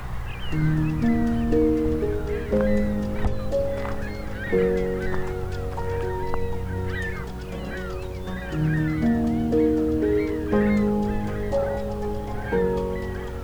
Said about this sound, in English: A lot of ringbill calls. Ringbill gull calls. They seem to have collectively decided to change direction. And changing direction again. Seem to be all ring-billed gulls.